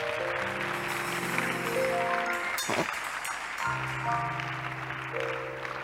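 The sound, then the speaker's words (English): A crowd claps steadily and densely throughout, a continuous wash of hand claps over sustained musical tones, with a brief break partway through before the applause and music carry on. “You can't even clap.”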